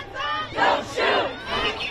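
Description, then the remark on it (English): A protest crowd in the streets of Brooklyn Center, Minnesota, chants in unison, loud massed voices rising in three rhythmic swells about half a second apart over a steady roar of the crowd. “They chanted, they marched, they yelled at the cops, they held up signs reading Black Lives Matter.”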